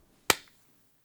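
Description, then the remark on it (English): A single sharp hand clap made to sync audio, bright and percussive, with a short ringing tail that fades within a fraction of a second, followed by quiet. “All right, clap, sync.”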